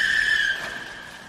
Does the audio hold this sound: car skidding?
yes